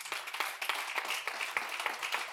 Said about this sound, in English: Can somebody say amen? Oh, it's real quiet. Let's give the Lord a round of applause this morning.